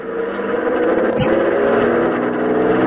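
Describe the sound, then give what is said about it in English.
A truck engine roars loudly and steadily as the truck drives off along the road shoulder to squeeze past something blocking traffic, its deep rumbling drone holding for a few seconds, with a brief sharp click partway through and no voices. “Yeah, looks like you might squeeze by in the shoulder. Here goes.”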